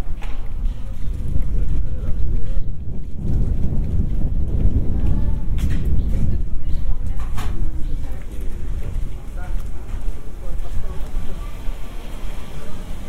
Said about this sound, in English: It's a bit windy here.